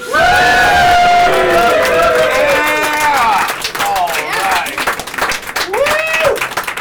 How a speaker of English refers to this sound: please whoop and cheer for the guy who's already standing in front of the stage. It's John Hastings, everybody!